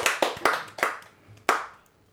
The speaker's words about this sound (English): Billy. Clap it up. I'm so proud.